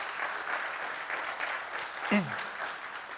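An audience claps steadily, a dense, even crackle of many hands that holds its level throughout, with a brief whoop cutting through just after the midpoint.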